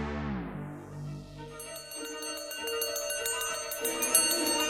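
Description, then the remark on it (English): A loud alarm bell rings out from a roof, starting with a lingering metallic tone and then breaking into rapid, continuous clanging strikes that stay bright and steady to the end. “The ringing of a bell pierced the silence.”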